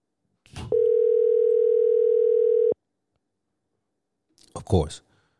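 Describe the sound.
A phone line rings once with a single steady electronic tone lasting about two seconds, framed by faint clicks, followed by silence and then a brief muffled burst of voice. A man is being called on the phone and does not pick up.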